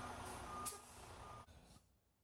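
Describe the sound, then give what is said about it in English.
A large bus rumbles with a steady engine drone and a thin warning tone, a sharp hiss of air brakes partway through, then the noise quickly fades out. “get that sound and that siren going, Remus, because I think the Gus bus is about to be taken out of neutral or park”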